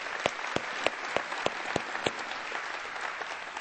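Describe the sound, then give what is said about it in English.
An audience at the Long Point campus applauds for the Irmo campus in a dense, steady wash of clapping, with a few sharper claps landing in a regular beat during the first two seconds before blending into the crowd noise. “Let's give it up for the Irmo campus.”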